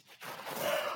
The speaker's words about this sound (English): And I also will say that I love that we all gasped when you said we went to sign the guest book.